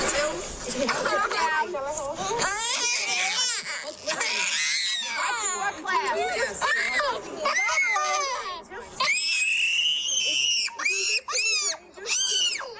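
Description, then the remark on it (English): A five-year-old girl getting a vaccine at 7:30 in the morning screams and wails in loud, high-pitched bursts for several seconds, sobbing between cries, while other voices murmur in the background. “Okay, now that was a five-year-old little girl getting the vaccine at 7:30 in the morning, right before getting shuffled off to class.”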